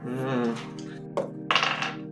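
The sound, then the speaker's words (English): Two dice, rolled for a strength check in a tabletop game, clatter across a hard tabletop in two quick bursts, a sharp knock followed by a short rattling tumble, over a steady low droning hum in the background. “Both of these dice just failed me, but”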